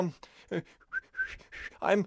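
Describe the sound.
A person whistles a few short, high chirps, mimicking a bird, interspersed with breathy, huffing vocal sounds. The whistled notes are brief and thin, rising and falling quickly.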